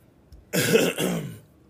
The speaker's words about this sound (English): Let me clear my throat on this one.